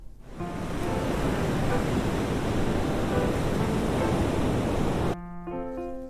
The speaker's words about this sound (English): That sounds like the ocean.